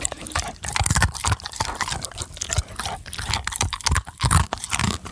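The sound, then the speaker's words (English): A dog named Millie crunches loudly on a hard, crunchy treat, with rapid, irregular bites and wet chewing and smacking sounds, no talking. “I want Millie to come over, and I'm going to put the microphone up so that you can hear exactly how crunchy these wonderful treats are.”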